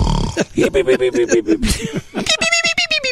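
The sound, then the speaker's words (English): A voice mimics Shemp's cartoonish snore: a loud run of rhythmic guttural snorting pulses that shifts into high, squeaky whistling bursts. “I like the Shemp snore myself.”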